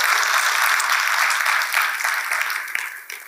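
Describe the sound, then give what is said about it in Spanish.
A crowd applauds the Lord one morning, to the glory of God: a dense, steady wash of many hands clapping that holds loud for a few seconds before thinning and tapering off toward the end. “Denle al Señor un aplauso esta mañana para la gloria de Dios.”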